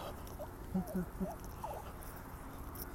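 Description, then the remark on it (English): Zizix, a puppy being walked, whines in a few short, squeaky bursts during the first couple of seconds, wanting to find food and other dogs to play with, thin and fairly faint against a steady background hiss. “you can hear my dog whining in the background because he wants to find food, and other dogs is his main.”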